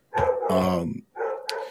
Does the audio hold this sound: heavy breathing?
no